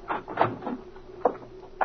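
A door opens and shuts: a few sharp latch clicks and knocks spread over a couple of seconds, with a soft rustling rumble between them and no one speaking.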